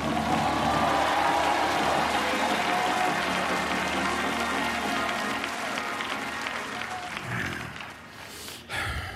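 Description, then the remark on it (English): A large crowd claps loudly and continuously, with scattered shouts and cheers rising through the applause before it tapers off near the end, answering a call to enlist in the army of God. “If that's you, I dare you to clap and shout.”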